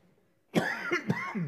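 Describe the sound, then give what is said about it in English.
A fairly loud cough bursts out after a brief quiet, followed by a couple more raspy, throaty coughs in quick succession. “And I do have a cough drop in my cough.”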